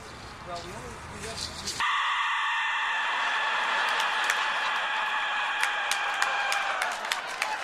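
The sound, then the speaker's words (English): After a brief murmur, a Mexican death whistle lets out a loud, harsh, sustained shriek, a rasping high-pitched scream-like blast that holds steady for several seconds with slight wavering. “Here's how it sounds in the hands of a master. This is the death whistle.”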